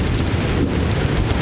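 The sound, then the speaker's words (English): Heavy rain pours down in a steady, dense roar, a constant wash of hissing and low rumble with no pauses and no voices. “It was just rain sound effects now.”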